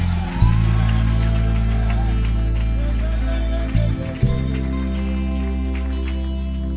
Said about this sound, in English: If you believe it, give them a hand clap and a shout.